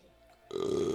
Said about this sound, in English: Got to burp for a second, not throw up.